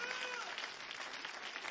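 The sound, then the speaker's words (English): A crowd claps steadily together to give the Lord praise, a dense, continuous wash of many hands applauding, with faint voices mixed in beneath the clapping. “Come on, clap your hands and give the Lord praise here today.”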